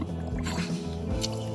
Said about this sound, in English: In this one, three pigs are huddling together.